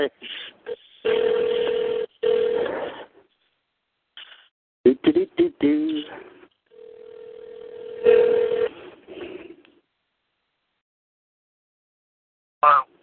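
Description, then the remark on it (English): A phone call rings out over the line, two long steady ringback tones separated by a gap, with someone talking in between and after. “Let me get it, Joe. I'm ringing. He's ringing.”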